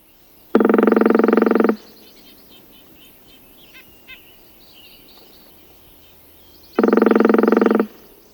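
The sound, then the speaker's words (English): Two loud, rapid woodpecker drum rolls of a northern flicker, each lasting about a second, separated by several seconds of quiet outdoor background with faint bird calls. “Here is the northern flicker drumming.”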